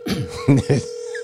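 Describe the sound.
A steady, unbroken telephone tone hums throughout the short clip as a call is placed to a special guest, with a few brief bursts of voices speaking over it.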